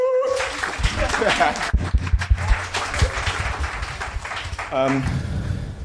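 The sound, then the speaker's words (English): An audience gives itself a sustained round of applause for attending, a dense, steady wash of clapping that holds for several seconds while a voice speaks briefly over it near the start and again near the end. “Just give yourselves a round of applause for being here.”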